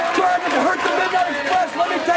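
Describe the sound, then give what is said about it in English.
A large wrestling arena crowd roars continuously, a dense wall of cheering and shouting voices with steady loudness throughout and no clear individual words. “Well, the crowd's too into it. You can't make it out”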